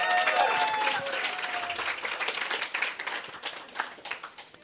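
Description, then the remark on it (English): An audience breaks into sustained applause, a last round of applause for the speakers at the end of a session, a dense crackle of many hands clapping that stays steady for several seconds before thinning out toward the end. “And one last round of applause for our speakers.”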